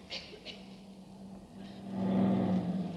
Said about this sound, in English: A truck drove through that one.